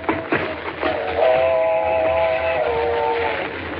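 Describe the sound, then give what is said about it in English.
A train approaches with a steady rumble while its whistle sounds a long, sustained multi-tone blast, holding loud for a couple of seconds before easing slightly. “Mr. Kent, there she comes. Thank heavens we're near the tracks.”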